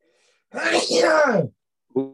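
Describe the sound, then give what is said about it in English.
A single loud, drawn-out sneeze, noisy and partly voiced with a falling pitch, lasting about a second before a voice briefly starts speaking. “God bless you.”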